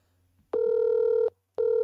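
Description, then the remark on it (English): A phone ringback tone rings over the line of an unanswered phone call, one steady electronic burst followed by a short pause and the start of another, fairly loud and with no one speaking. “Oh, I'm being ignored. Call screening.”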